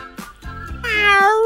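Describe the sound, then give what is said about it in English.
A man imitates a cat with a loud meow, rising then drawn out into a long wavering cry that sounds convincingly feline. “the app is understanding him because he does such a good cat”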